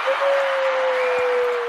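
A dense, steady burst of applause fills the whole moment, a wash of many hands clapping with no talk, and a thin sustained tone runs faintly beneath it.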